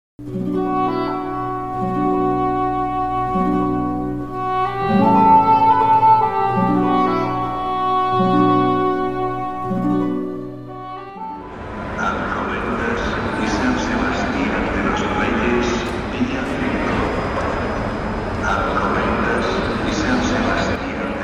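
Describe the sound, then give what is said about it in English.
Roughly ten seconds of sustained tonal music give way abruptly to loud, dense ambience of the busy Atocha train station concourse in Spain: a steady wash of crowd chatter, footsteps and echoing clatter filling the space. “I'm going to hand myself over to myself in a very loud and busy Atocha train station.”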